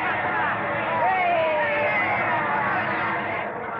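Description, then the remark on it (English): A large baseball stadium crowd cheers in a dense, steady roar after a clean single through shortstop scores a runner, individual shouts and a whistle-like cry rising through the din before it eases slightly at the end. “It's a clean single right through shortstop. Marconi scores and Hopkins is safe on first. And listen to that crowd.”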